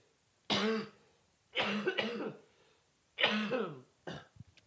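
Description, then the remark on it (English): Several harsh coughs from one person come in four separate bursts with short pauses between them, rough and throaty with no talking around them. “And I feel even like guilty about coughing on the podcast the whole time.”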